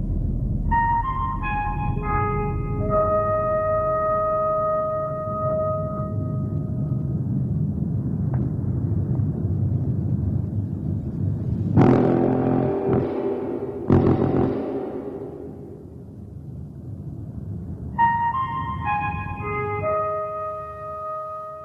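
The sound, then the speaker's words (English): A five-note musical signal rings out in clear, sustained tones over a deep, continuous rumble, then returns near the end after a couple of harsh bursts of noise in the middle. “If everything's ready here on the dark side of the moon, play the five tones.”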